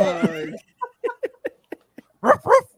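A dog lets out a high, wavering whine, then a string of short, soft yips, and finishes with two louder, sharper barks.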